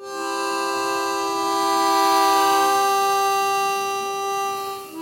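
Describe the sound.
A voice imitates a whale with one long, steady droning moan, rich and buzzy, held for about five seconds. It swells slightly in the middle and tapers off at the end, with no talking.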